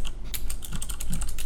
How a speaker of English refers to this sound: Who's looking it up? I hear the keyboard.